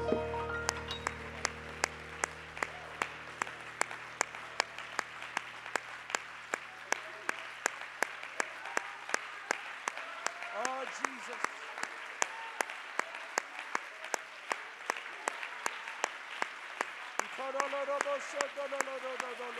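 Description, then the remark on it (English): After a prayer, a crowd claps for the Lord together in a steady, even rhythm, roughly two to three claps per second, with indistinct voices calling out underneath and rising near the end. “Give the Lord one more good hand clap.”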